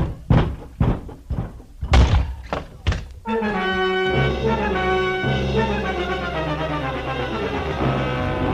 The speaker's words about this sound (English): Now, open that door on your right. This one? Yes. Years ago, that cellar was filled with the best wines the world had to offer.